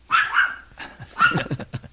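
A dog barks several times in quick succession, a longer yelping bark followed by a rapid run of short, sharp barks, clear, with no one talking.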